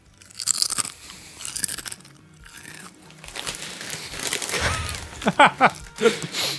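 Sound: crunching kettle chips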